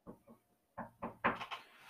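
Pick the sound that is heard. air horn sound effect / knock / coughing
knock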